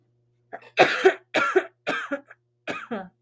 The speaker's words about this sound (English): Sorry about that, you guys. I have like really awful allergy cough, and sometimes it's hard to speak and it throws me for a loop.